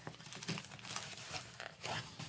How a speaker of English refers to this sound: All right, so let's go ahead and dig in because I'm really excited for this. Grab my handy dandy scissors here and just rip into it.